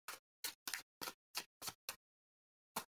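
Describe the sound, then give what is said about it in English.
Tarot cards being shuffled: a quick, uneven run of seven crisp, papery snaps, then a pause and one final snap, with no one talking. “And I was channeling that, like, as I was shuffling the cards, I was like, it's not the spark.”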